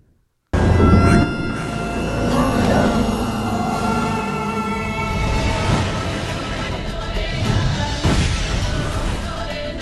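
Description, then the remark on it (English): A TV show theme song plays loudly and continuously, with thick layered sustained tones over repeated percussive hits and no one talking over it. “Let's see if you know what theme song this is.”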